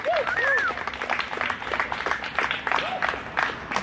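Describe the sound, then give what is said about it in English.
A crowd at a workers' rally claps steadily and loudly throughout, dense overlapping applause with a few whistles and shouted cheers rising above it, applauding for turning up and in support of Ansel workers battling for their rights. “give ourselves a round of applause for turning up to some of the worst traffic”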